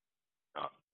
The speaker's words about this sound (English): Can you hear me? Yeah, just coughing in the background. No problem.